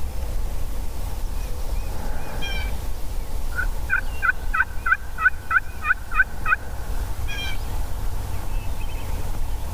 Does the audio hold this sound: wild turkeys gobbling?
yes